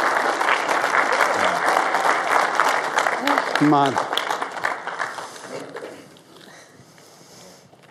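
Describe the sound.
A crowd applauds steadily with scattered cheers and whoops to encourage a woman called up to join the speaker, loud for about six seconds before the clapping thins out and fades; a man's voice briefly calls out over it.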